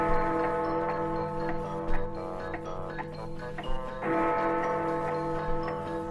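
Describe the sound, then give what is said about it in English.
An enormous white and gold clock chimes the hour, its rich bell-like tones ringing and overlapping in a steady sustained wash, with a few fresh strikes standing out along the way. No voices are heard. “As he sailed past the clock face, he heard the chimes telling the hour.”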